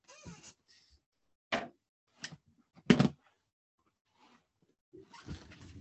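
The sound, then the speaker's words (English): Several irregular knocks and thuds against a door as a pet plays with a toy placed in the door, with a couple of louder bangs in the middle and softer rattling between, with no talking. “There, at least now you won't knock on the door while you play with the toy.”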